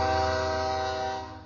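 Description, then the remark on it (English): A freight train of more than 100 cars, many carrying hazardous, flammable materials, passes by a derailment site, its horn blaring a loud, steady, multi-toned chord over a low rumble, holding for over a second before easing off slightly. No one speaks. “And as we were standing there talking, you know, one of these trains came past.”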